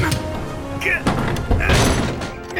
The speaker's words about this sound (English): Kristoff slammed the window shut, but Magnus was taken by the wind.